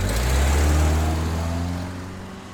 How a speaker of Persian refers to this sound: بالاخره پس از 15 دقیقه انتظار، پیکانی قهوه‌ای جلوی پای او ترمز زد.